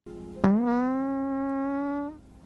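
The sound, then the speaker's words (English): A single long, buzzy fart that starts abruptly and holds a steady, reedy pitch for nearly two seconds before cutting off, fairly loud with no talking. “Sorry, I farted.”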